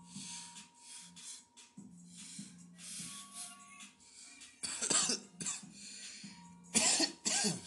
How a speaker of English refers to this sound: Finish coughing.